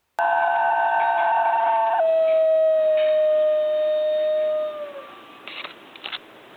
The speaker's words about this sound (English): These dogs make this very haunting vocalization that's really unlike anything that we hear anywhere else. And when you get two or more of them together, it's melodic.